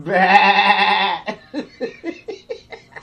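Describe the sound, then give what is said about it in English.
A sheep lets out one long, wavering bleat, followed by a quick run of six or so short, choppy bleats. Loud, with no talking. “This motherfucker just got to call me a sheep.”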